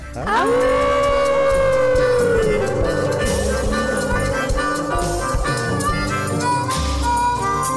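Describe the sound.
A group of people howl together like dogs on a count of three, howling at the Moondog on a host's Moondog Show, their voices swelling into long, loud, wavering tones that overlap and hold steady for several seconds, sounding almost like a siren.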